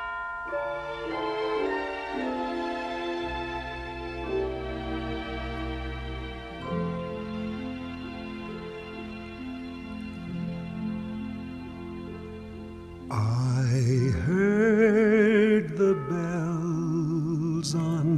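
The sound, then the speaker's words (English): A recorded Christmas hymn opens with a long, sustained instrumental introduction, then a male singer comes in loud with warm vibrato over the accompaniment. “please join in singing hymn number 240, I Heard the Bells on Christmas Day. This version is sung by ….”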